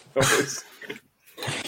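Three rough, scraping bursts of noise, fairly loud, with short pauses between them: a dog scratching at a door.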